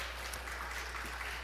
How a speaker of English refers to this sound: I was really impressed with the kids. Why don't we give the kids a round of applause just one more time?